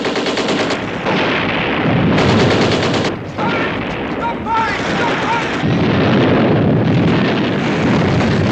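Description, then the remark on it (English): Loud, relentless gunfire from many soldiers' rifles and machine guns, rapid overlapping bursts forming a dense roar, with brief high whistling tones cutting through midway. “At this very moment, they could be making all those men out there turn their guns on one another.”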